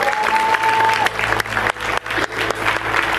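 An audience claps together in praise of the Lord, a dense, steady burst of applause, loud and sustained throughout, with a brief high whistle-like tone near the start.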